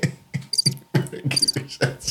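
Crickets chirp in quick, repeated pulses, a steady rhythmic trill, fairly clear, with no voices over it.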